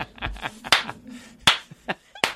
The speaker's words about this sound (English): This is for me. I'm clapping for myself.